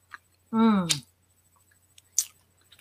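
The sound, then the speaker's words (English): Someone chews a crunchy deep-fried snack, with a few short crisp crunches spread apart and a brief voiced hum of appreciation between bites. “Every one I've bitten into, you can, it's like almost that crispy little It's got a bite little crunch.”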